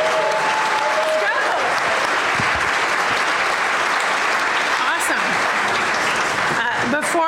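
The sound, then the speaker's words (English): Sustained audience applause at a University of Washington event welcoming Coach DeBoer and his family fills the whole stretch, a dense, steady wash of many hands clapping at an even loudness, with a few brief shouts and whistles rising above it. “Before I formally, was that a clap?”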